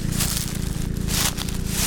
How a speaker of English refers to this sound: There's a rustle and crunch of leaves underfoot, their green long gone.